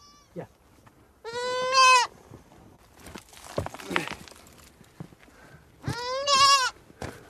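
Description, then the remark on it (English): Two loud, wavering goat bleats about four seconds apart, with shuffling footsteps and scraping movement between them and no one speaking, as a goat is taken out of a rock hole. “Do you want to go and take care of Sonam's goats?”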